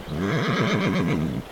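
A horse whinnies loudly, one sustained neigh with a rapidly wavering, trembling pitch lasting over a second before cutting off. No voices are heard.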